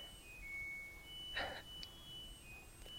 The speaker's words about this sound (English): the strange sing-songy alarm that goes off on her dryer when the settings are set, the volume settings are set to on. We apologize for that funny distraction.